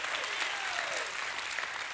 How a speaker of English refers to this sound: If you know that you know that you know that you've heard his voice, you've accepted him, and you're waiting on that day, give him a crazy hand clap and a shout of praise.